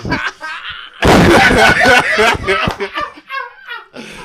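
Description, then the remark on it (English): A voice mimics gunshots with its mouth: a loud, harsh burst of blasts, then choppier popping noises mixed with laughter. “Gunshots. Gunshots.”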